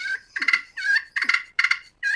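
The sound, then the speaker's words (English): A slate turkey call, played by softly pulling the striker down with the fingertips using very little pressure, makes soft, rolling purrs: about six short, fluttering bursts in a steady rhythm with brief pauses between them. The sound is moderately quiet, with no voices. “your pot call with the big surface like that, it will make clucks and purrs”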